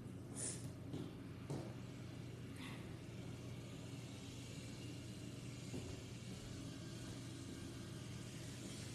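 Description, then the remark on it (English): A video game race car engine hums steadily throughout as a car is tested at Pocono Raceway, with a constant low rumble and a few brief higher-pitched whooshes and clicks early on, no one speaking. “I'm testing out some new cars.”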